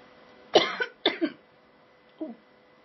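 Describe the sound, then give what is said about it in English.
Two sharp, harsh coughs in quick succession, followed by a softer, smaller cough a second later, the choking sputter of someone who swallowed water the wrong way. “I swallowed my water wrong.”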